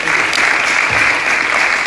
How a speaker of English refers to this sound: So can you please give them a round of applause as well? And give yourselves a round of applause as well, because y'all didn't have to be here today.